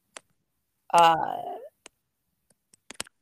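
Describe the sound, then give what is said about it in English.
Several small, sharp computer mouse clicks land at irregular intervals, two of them close together near the end, with a brief drawn-out vocal sound like a groan early on. “I'm clicking on it.”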